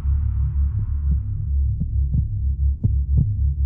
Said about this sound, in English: please tell me you accidentally hit the heartbeat sound effect on the soundboard again.